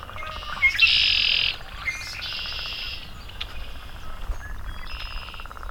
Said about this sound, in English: Also hear a couple swamp sparrows ticking.